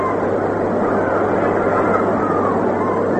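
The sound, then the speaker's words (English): A steady, dense murmur of a large ballpark crowd still coming in before a baseball game, an even wash of indistinct voices that holds at a constant level throughout, with a low hum underneath and no clear individual words. “Pretty nice crowd, and still coming in, as I told you, in spite of the weather bulletins, which figure to keep a lot of people away, we're going to have a real nice turnout and a lot of excitement.”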